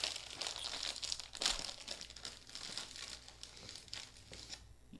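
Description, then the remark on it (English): A packet of Walkers Max Strong Hot Chicken Wings crisps crinkles and rustles continuously for about five seconds, a dense, bright crackling with one louder crunch-like burst near the start, and no voices. “We're going to try the Walker's Max Strong Hot Chicken Wings chips.”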